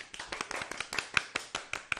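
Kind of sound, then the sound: human body sound, hands clapping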